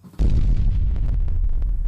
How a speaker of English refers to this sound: Oh, explosions. Oh, that's why someone asked if there was a truck alarm.